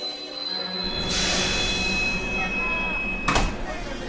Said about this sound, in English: I departed Mexico City on a narrow-gauge train that would take me up into the mountains.